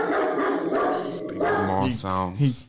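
A dog barks and yelps loudly several times in quick succession near the end, following a stretch of dense, noisy background sound.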